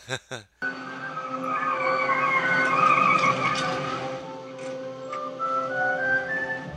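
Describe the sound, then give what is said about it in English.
A pickup truck's tires skid and squeal for several seconds as it spins, a sustained screeching tone over engine rumble, loud, following a brief burst of noise at the start. “He does his little badass spin.”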